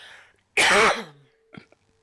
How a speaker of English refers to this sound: Just a sec, I'm going to cough.